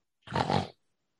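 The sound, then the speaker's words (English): A voice imitates one loud, giant snore of a passed-out hill giant: a brief, low, rasping snort that swells twice within half a second, heard alone against silence. “you hear this loud snoring of the hill giant as he's passed out.”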